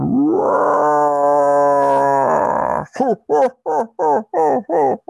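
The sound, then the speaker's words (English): A loud, drawn-out monstrous roar of Shia LaBeouf holds steady for a few seconds, then breaks into about seven quick, rhythmic guttural snarls, forceful with no talking. “Behind you, you hear the roar of Shia LaBeouf.”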